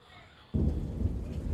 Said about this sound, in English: I listen to the sound of the rain falling down my window. Rain for a gentle wind.